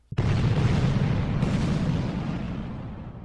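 Heavy cannon fire from neighboring ships booms out suddenly, a second blast landing about a second later, leaving a loud, deep, rumbling roar that slowly fades. No voices are heard.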